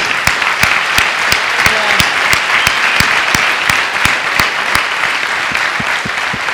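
An audience in Copenhagen applauds to thank an event organizer, steadily, a dense wash of many hands clapping at once, with a few sharper individual claps cutting through at a regular beat. No one speaks.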